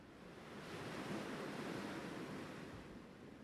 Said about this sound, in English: And then, everything melts away. I find myself entranced by the movement of the waves and the never-ending expanse that is before me. I am in awe every time.